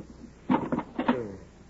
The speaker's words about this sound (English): Wait till I get some chalk out of this kit.